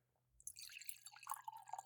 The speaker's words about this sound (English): I'm going to say we've got a new wine here, our small lot Muscat, and I'm just going to pour a little bit here.